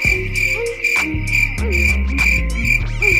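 Crickets chirp steadily in a dense, continuous pulsing trill that holds at the same level throughout, with soft low tones humming underneath and no one speaking.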